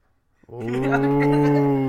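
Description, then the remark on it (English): A person imitates a goat bleat, saying "bah" in one long, steady, nasal cry, loud, starting after a brief silence and holding until the end. “I was going to make a goat noise, but bah.”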